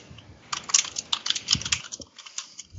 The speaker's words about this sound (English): I just hear the sound of typing in my head right now.